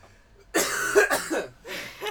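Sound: coughing fit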